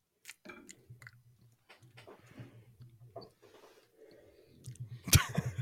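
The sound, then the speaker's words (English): Wet chewing of gum with smacking and clicking in an uneven rhythm, fairly loud against a quiet background, ending in a sharper burst. “I was trying to chew gum like Pete Carroll there.”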